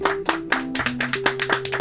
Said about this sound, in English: Well, it started off a little choppy, but thank you, audience, and thank you to the throng that are listening. You can give yourselves a hand. You can clap. That's cool.